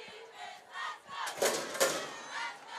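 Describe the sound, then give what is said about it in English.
A football crowd at a game between Kathleen and the Tornadoes roars and cheers behind the Red Devil defense in the second quarter, a steady wash of voices swelling into two louder bursts of shouting midway before settling back to a sustained din. “Crowd starting to get behind the Red Devil defense.”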